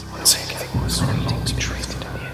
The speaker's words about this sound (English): Then I heard it, a whisper. Only faint, but real. I stopped dead in my tracks and listened intently.